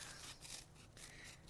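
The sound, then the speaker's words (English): Scissors snipping through construction paper to make cutout snowflakes for a tree, a quiet series of soft crisp cuts, a few rhythmic strokes over a faint hiss, with no one talking. “and making cutout snowflakes, because we have a lot of space to fill on our tree.”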